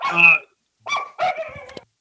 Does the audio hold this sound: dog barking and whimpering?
yes